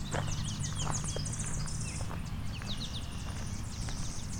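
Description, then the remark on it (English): Short buzzy insect-like notes from a clay-colored sparrow, repeated amid a busy chorus of other bird chirps and a steady low rumble of outdoor background noise. “And plate-colored sparrow, too. Doing its buzz, buzz, buzz.”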